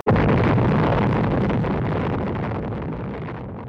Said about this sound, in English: 87 ships take positions 3 miles off Bikini to suffer the shattering impact of the 5th atomic bomb. Here will be tested the capacity of modern armament to withstand the crushing shock of compressed water traveling 1 mile per second.